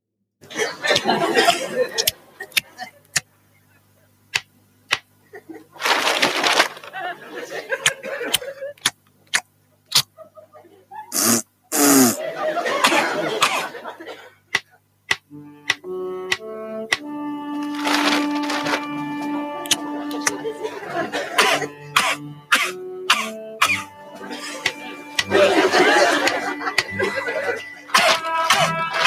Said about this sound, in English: It is much worse without visuals. Yeah, and in headphones. A million times worse without visuals. I mean, … with the chewing and … coughing with your mouth open. Stop it. Nightmares.